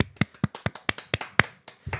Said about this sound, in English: A round of applause.